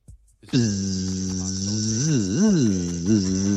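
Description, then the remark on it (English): A voice imitates a mosquito with a sustained, nasal buzzing drone for about three seconds, its pitch wavering and swooping up and down as if the insect is circling. “A bug. One mosquito's in the room.”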